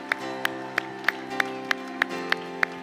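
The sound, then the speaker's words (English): An audience at a worship service claps hands together in praise to Jesus in a steady, even beat, about nine sharp claps over sustained organ-like musical tones, with no talking. “Clap your hands again.”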